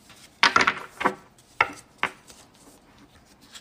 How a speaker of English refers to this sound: Okay, so however you best like to pull a card. Okay. We will see what story we're going to work on today. Shuffle it a little bit.